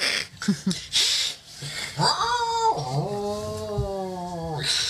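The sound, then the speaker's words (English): A person imitates a cat meowing: a few short breathy sounds, then a long, drawn-out nasal 'meow' that rises and slowly falls, fairly loud. “Just a bunch of people going...”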